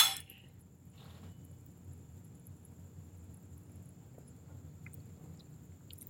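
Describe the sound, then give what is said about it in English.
Wine glasses clink sharply together in a toast at the start, leaving a thin high ring that hangs in the air, followed by a softer tap and a low, steady hum with no talking. “Keep our palate. Cheers. Cheers. Cheers.”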